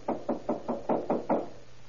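Seven quick, evenly spaced knocks on a front door by the chief of police and a deputy sheriff trying to wake a resident on the night of October 15th, 1938, in Nogales, Arizona, rapped in a steady rhythm at moderate loudness, then quiet with no voices.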